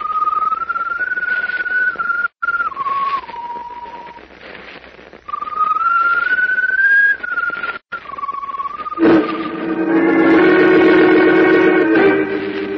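A strange glowing bird perched on top of a mast whistles mournfully in long, slowly rising then falling notes, repeated twice, before a fuller, buzzier tone swells loudly at the end; no one speaks.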